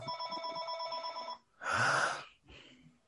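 A telephone bell rings in a sustained electronic trill for about a second and a half, followed by a short breathy burst and a fainter trailing noise, with no talking.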